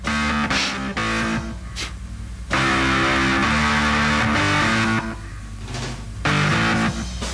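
An isolated organ track plays the song's main riff: loud, gritty, distorted sustained chords with driving low notes from the bass keys played with the left hand, faint drum hits bleeding through underneath and no voices.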